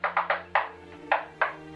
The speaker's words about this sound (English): There's a stylized knock at the door.